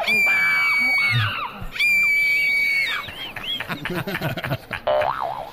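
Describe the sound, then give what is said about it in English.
A crowd screaming sound effect, standing for screaming trees at Petrified Forest National Park in Arizona: many shrill wavering voices rising and falling together, loud, preceded by two long springy boing-like tones. “You walk in here and all the trees are screaming.”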